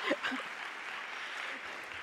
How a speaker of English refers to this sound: Round of applause. Thank you.